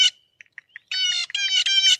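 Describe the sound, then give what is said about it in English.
A blue jay gives harsh, buzzy jay calls in quick succession, interspersed with short clicking notes like a brief rattle, loud, with no voices. “They're going, JJ, JJ, JJ. And then you heard that little rattle noise in there.”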